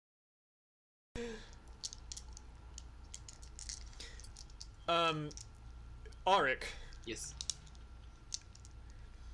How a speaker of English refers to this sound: Whoever's twiddling around their dice, can you stop?